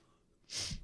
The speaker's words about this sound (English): It's such a bad sneeze. I've never heard. Why is that bad? Because you're not getting the sneeze full effect out of it. You're like hesitating through.